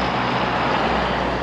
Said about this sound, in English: In my state of Maine, ooh, big truck going by.